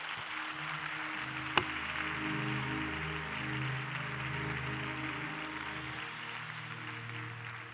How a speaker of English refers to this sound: Clap your hands for Bishop Blake at this time.